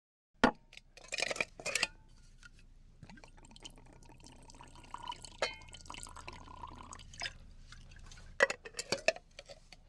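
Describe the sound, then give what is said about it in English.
Mint tea is poured into a cup, a steady trickling stream with a sharp clink of crockery at the start and a couple more near the end. No one speaks. “Now, before we start, should we have some tea? Of course. Pour me some mint, please.”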